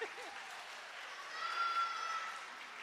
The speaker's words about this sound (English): Right, congregation, give yourself a round of applause.